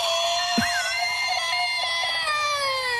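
A man screaming as loud as he can lets out a single sustained, very loud scream, held steadily for several seconds with a harsh, ringing tone that slowly drops in pitch. No talking.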